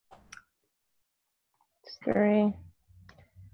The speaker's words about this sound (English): And go ahead and roll your defense dice. Okay. Let's see if you take any defensive damage.